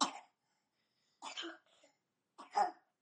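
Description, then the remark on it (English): A young boy coughs three times in separate short bursts, each about a second apart, fairly loud, with quiet pauses between and no talking. “He has a cough at the moment.”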